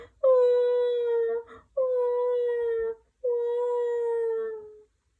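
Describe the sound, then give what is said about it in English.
A voice imitates a little boy elephant crying, with three long, sustained wailing tones, each held steady for over a second with short pauses between, loud. “And the poor little boy elephant is crying his heart out. Can you cry with me?”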